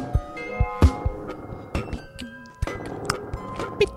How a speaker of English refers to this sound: Pouring a glass of wine.